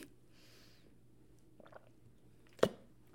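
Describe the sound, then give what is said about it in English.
Someone drinks water because their throat is sore: a soft airy sip, a few small wet mouth clicks, then one sharp gulp as they swallow. Quiet overall, with no talking. “Before we get into our weekly intention, I, of course, have to drink more water because my throat, babes, is not doing great.”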